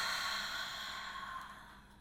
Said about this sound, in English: Let's take a nice deep breath in. Really slow, breathing in the beautiful air of the morning. And breathe out.